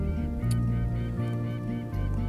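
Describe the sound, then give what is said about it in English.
A seagull on a beach calls loudly in a run of harsh, nasal cries that blur together into a continuous, wavering squawk with no pauses between them. “Can you hear that in the background? That is a seagull, either laughing or crying, I can't tell which.”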